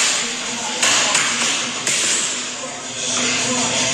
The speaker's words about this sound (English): What's he punching? He's punching his sparring partner's mitts. Imagine that job.